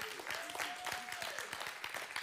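A church audience at an Easter Sunday service breaks into steady applause, a dense crackle of many hands clapping at once, with a faint voice calling out briefly over the clapping, after the preacher declares that the tomb is empty and Jesus is alive.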